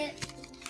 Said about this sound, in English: So I was just scribbling on this paper.